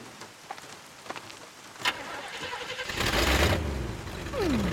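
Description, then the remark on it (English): A car engine cranks and catches after a few clicks and clunks, then settles into a steady, fairly loud idle, with a rising whine near the end. “Engine still purrs nicely.”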